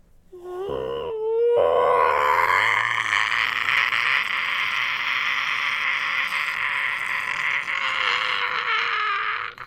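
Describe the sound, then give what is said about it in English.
A thin, tearing scream rises out of a brief wavering cry and holds for several seconds, high, strained and rasping, loud throughout before cutting off abruptly. Gollum screams as if in pain after a rope is tied to his ankle. “Gollum began to scream, a thin, tearing sound, very horrible to hear.”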